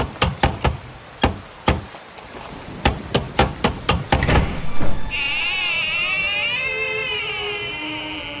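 Loud, heavy knocks from a big gargoyle-shaped door knocker strike about a dozen times in uneven bursts, echoing, followed by a long, wavering creak that drags on to the end.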